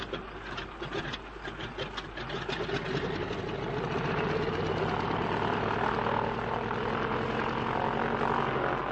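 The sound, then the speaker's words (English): Propeller aircraft engines, started stone cold, roar steadily, swelling louder after a few seconds into a sustained, throbbing drone with no voices, as if the planes are powering up for takeoff. “And if only your engines don't seize, they're stone cold, Bertie.”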